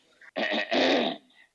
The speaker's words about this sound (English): See, Steph, my cough is persisting